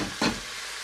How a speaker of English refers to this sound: Now this is when we begin to multitask, because I'm now going to fry my egg. I'm going to turn the heat down to low on my nasi goreng. I'm getting out my second fry pan. And let's get frying those eggs.